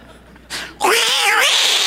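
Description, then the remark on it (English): A human voice imitates two cats fighting: a short breathy hiss, then a loud, wavering caterwaul that rises and falls for about a second, strained. “It's like a couple of cats in a room just going nuts.”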